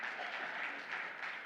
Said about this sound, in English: And man, if he's in here, I don't know if he's in here, but let's give Pastor Ricardo a round of applause. It takes a lot to do that.